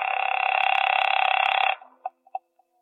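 A telephone is dialed at the Hotel Lee in Charleston at 8:30 p.m.: a steady buzzing whir runs loud for well over a second, then a few quick clicks and blips follow before it falls silent.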